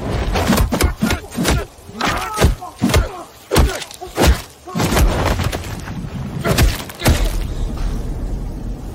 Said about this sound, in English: So many punches. Too many punches. No. No, that's not enough punches. That's that is the right amount of bat punches.